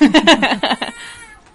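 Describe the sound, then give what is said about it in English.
A cat meows loudly in a quick run of several short, insistent cries, then the sound trails off into quiet. “…'s playing the kitty”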